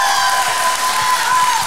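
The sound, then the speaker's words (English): Steady applause from a church audience for a woman before she leaves, a dense wash of many hands clapping at once, fairly loud and even throughout with a few faint cheers mixed in. “But would you give Gina a good clap before she goes?”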